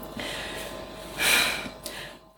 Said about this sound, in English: Deep breath. My breathing's working.